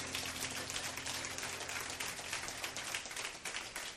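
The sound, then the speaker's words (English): A church audience claps steadily during a morning service, a dense, continuous crackle of many hands at an even loudness for about four seconds, with no voices over it. “Go ahead, you can clap.”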